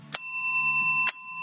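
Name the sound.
bell ringing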